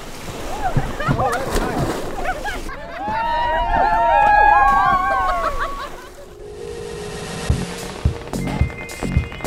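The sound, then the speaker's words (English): Water splashes and churns as several people from a kayaking group take a quick swim in a river in New England, with excited shouts and whoops rising over the sloshing, then the splashing continues more quietly with voices in the background. “But before getting back into their kayaks, one quick swim in the river they love.”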